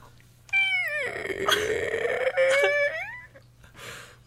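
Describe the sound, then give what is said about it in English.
A voice imitates the creak of an old house's front door opening: one long, whiny, strained tone that dips, holds and bends upward, almost cat-like, followed by a brief breathy tail. “That was supposed to be a door creak.”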